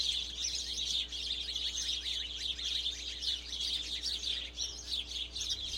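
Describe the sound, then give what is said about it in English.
A group of sparrows chirps noisily and continuously, many overlapping high tweets forming a busy, chattering chorus, with a low steady hum underneath. “Then a group of sparrows began making a fuss in the other direction.”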